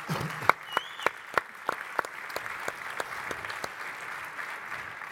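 An audience claps for a few seconds, a steady patter of many hands with some sharper individual claps standing out, at moderate volume and with no one speaking over it.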